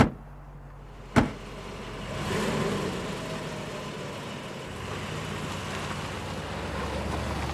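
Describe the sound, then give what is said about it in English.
A sharp thud like a car door shutting, then a car engine starts and rumbles steadily as the vehicle pulls off, a continuous mid-level motor noise with no voices. “You know what? I don't care. Just get in the car. We raking tonight!”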